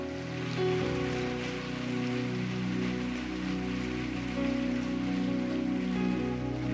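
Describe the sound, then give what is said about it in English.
An audience claps after a prayer, steadily and densely for several seconds, a continuous wash of applause over sustained low musical tones, with no one speaking. “Come on, let's give those who prayed that prayer a hand clap.”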